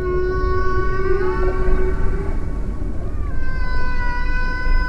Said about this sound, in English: Whales have massive communication networks. Geographically, the largest besides humans. Researchers say blue whales pass their songs through deep water channels, information traveling across a great stretch of the planet, like an aquatic internet.